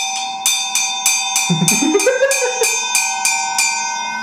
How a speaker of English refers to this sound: Yeah, man. There it is. The ice bell. It's also like one of my heaviest cymbals. And definitely your smallest.